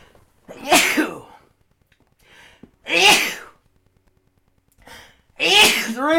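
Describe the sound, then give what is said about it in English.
Three loud sneezes spaced a couple of seconds apart, each preceded by a soft inhaling breath, with quiet pauses in between. “Three of them, you guys.”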